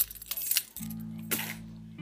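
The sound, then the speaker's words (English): Keys jingle in a short metallic flurry, then clink again briefly a moment later, over a steady low hum with no voices. “Keys of freedom.”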